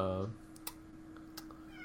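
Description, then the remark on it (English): A cat lets out a short meow at the start, followed by a few sharp clicks over a steady low background hum. “Oh, cat, what is it? Why? Do you hate skeletons that much? Yeah, just let her talk. She just wants to join in the conversation.”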